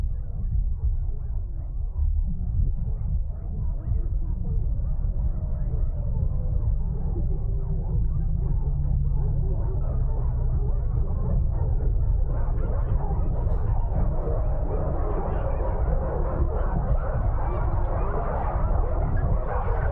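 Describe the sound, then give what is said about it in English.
A recording of 23,000 dogs barking at once, blended into a dense, continuous roar with no single bark standing out. It stays steady and loud throughout and grows slightly brighter toward the end. “This is 23,000 dogs.”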